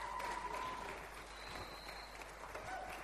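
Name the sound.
audience round of applause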